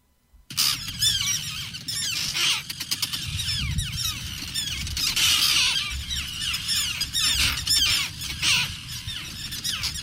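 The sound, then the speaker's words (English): A dense, agitated chorus of angry terns squawking nonstop, many harsh overlapping calls, loud and continuous with shrill squeals mixed in and a low rumble of wind or surf beneath. “Those are terns, very angry terns, recorded by Connecticut State ornithologist”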